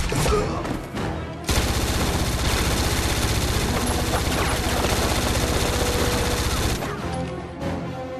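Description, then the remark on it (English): A loud, sustained fusillade of automatic gunfire from blank rounds, fired while filming a scene shot on Steadicam, a dense rapid crackle lasting about five seconds, framed by shorter bursts of shots before and after. “This Steadicam guy dressed head to toe in Kevlar, just in case one of these blanks actually did a bit of damage.”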